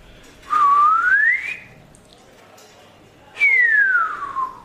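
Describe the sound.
A person whistles by mouth, imitating a swanee (slide) whistle: one tone glides steadily upward, a pause, then another glides smoothly down. Fairly loud, with no talking.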